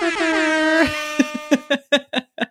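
A loud air horn blares in one long blast that sags slightly in pitch, then fires off a quick rhythmic run of about seven short honks, with no talking around it.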